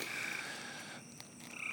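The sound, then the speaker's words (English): A steady chorus of tree frogs croaking along a country road right after a massive thunderstorm, with high trilling calls that fade briefly and return, continuous against a quiet night background. “All right, guys, hear those tree frogs? I'm running right after a massive thunderstorm.”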